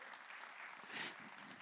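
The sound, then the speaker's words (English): An audience claps together in a steady, dense wash of hands, a continuous crackling patter with no distinct individual claps and no voices over it. “Let's go ahead and clap. You guys want to clap?”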